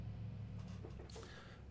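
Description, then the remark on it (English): A car passes: a low, steady engine rumble with a faint swell of road hiss midway, heard alone without any talking. “Now, stupid car.”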